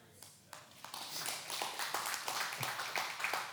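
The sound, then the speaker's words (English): An audience bursts into applause, a dense, crackling patter of many hands clapping that starts sparse and quickly swells to a steady, fairly loud roar with no voices over it. “You can hold your applause because there's a couple other wins.”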